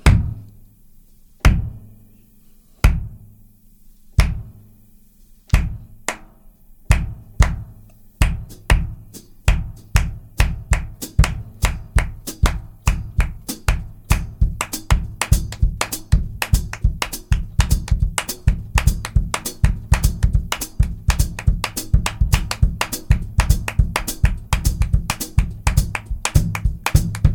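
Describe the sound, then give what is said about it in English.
Hand claps start slow and evenly spaced, then quicken into dense, syncopated patterns that shift between rhythmic variations, crisp with no talking over them; a demonstration of half-clap rhythm variations and syncopations. “So when we were talking about the half clap, I'll just do some variations of all of what we just talked about.”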